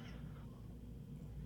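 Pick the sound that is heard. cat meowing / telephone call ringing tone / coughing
cat meowing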